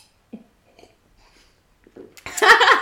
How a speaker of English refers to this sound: Well, that means right, should we take one big gulp each? All one right. Very big gulp. Let's go. Okay.